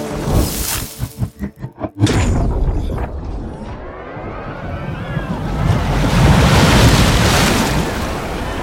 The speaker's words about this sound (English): The wave crashes, scatters the offering, puts out the incense.